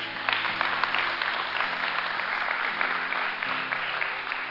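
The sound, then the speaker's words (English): A church audience claps for the Lord at the close of a sermon, a dense wash of many hands with no voices rising above it, holding an even, fairly loud level for several seconds. “If it did, give the Lord a hand clap.”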